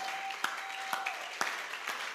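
An audience clapping together in a steady rhythm, sharp unified claps landing about twice a second over a dense wash of scattered crowd noise, moderately loud.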